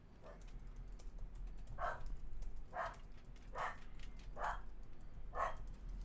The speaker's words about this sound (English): Dog.